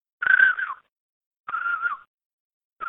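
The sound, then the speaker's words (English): A person whistles by mouth to imitate a juvenile crane's call: three short, reedy whistled notes with a slight wavering pitch that dips at the end, repeated with pauses between them, no talking. “That's probably going to sound terrible, but it's just a whistle. Only the juvenile birds do it.”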